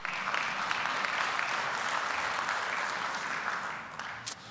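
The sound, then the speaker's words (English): A church audience at a morning service applauds steadily, many hands clapping in a dense, continuous patter that holds at an even level for several seconds before thinning slightly at the end. “Clap your hands again. That was good.”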